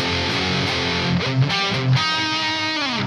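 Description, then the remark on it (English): A distorted electric guitar, played through an Axe FX 2 with a preset called Crunch Berries, rings out in dense, sustained chords, smeared with heavy echo and washy effects from a Roland GP100 for a guitarist's tone; loud and steady, with no voices. “And then all that echo and goop and stuff is a Roland GP100 for that … tone.”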